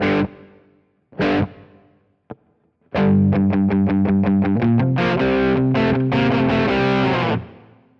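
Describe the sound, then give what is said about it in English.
A distorted electric guitar with not much gain and a very dynamic tone plays two ringing chords that decay, a quick muted hit, then a fast run of repeated picked notes into sustained chords, all washed in a light natural room reverb. “I added some natural reverb just to have a little bit of room.”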